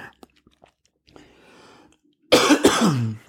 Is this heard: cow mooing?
no